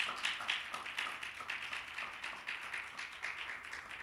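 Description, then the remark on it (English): An audience claps their hands together during a sermon, in a steady, rhythmic beat, the many overlapping claps forming a dense, continuous patter with no voices over it. “Everybody clap your hands in here.”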